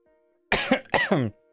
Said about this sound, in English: Okay. This cough's really annoying me.